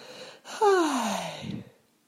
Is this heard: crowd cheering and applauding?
no